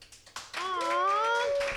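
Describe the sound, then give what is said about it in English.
A short burst of scattered audience clapping, a handful of sharp claps that quickly give way to a sustained rising and falling whoop from the crowd, applauding people who liked where they grew up. “Hey, can I get a round of applause for people who liked where they grew up?”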